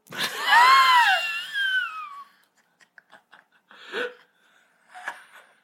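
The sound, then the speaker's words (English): A voice imitates a disapproving buzzer with a loud, wavering, falling cry lasting about two seconds, followed by a few faint clicks and short breathy sounds. “Yeah, it was a buzzer of disapproval.”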